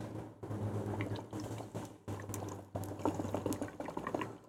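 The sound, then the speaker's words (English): Water bubbling in a glass bong during a hit from an Illadelf glass bowl: a steady, dense gurgle broken by a few brief pauses, with a low hum underneath and no talking. “Like, have you ever hit a Illadelf bowl? I haven't. That's crazy. That shit hit.”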